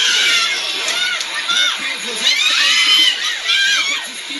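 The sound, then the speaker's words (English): A dense crowd of Filipino families watching a video cheers and shouts continuously, with many overlapping high-pitched voices, including excited children, rising and falling in loud waves throughout. “There's just several videos of Filipino families watching.”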